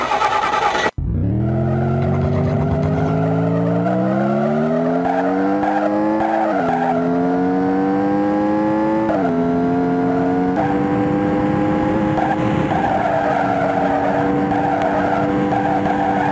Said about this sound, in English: So it kind of just goes on like that. There's not really. So it's no music. A race car game.